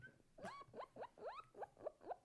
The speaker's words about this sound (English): Guinea pig.